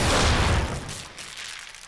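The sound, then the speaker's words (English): A single loud explosion bursts out with a deep, heavy boom, then fades into a low rumbling decay over the next second or so. No voices are heard. “That was an explosion.”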